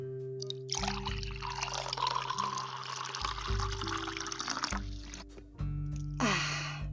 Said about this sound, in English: but before we dive deep, let's take a sip of water. Let's take more than a sip, actually. Let's get hydrated.